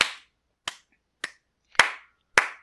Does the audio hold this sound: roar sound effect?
no